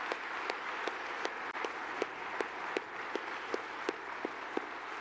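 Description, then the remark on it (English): Steady applause from a crowd for the interns, a dense wash of clapping with sharper claps standing out at a regular, even beat throughout. Fairly loud and continuous, with no voices. “Let's just give them a round of applause for what they've done.”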